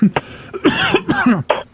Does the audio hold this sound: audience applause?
no